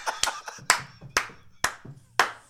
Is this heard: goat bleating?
no